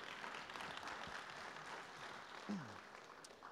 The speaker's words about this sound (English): Because we're clapping for God and what he's done, not for me,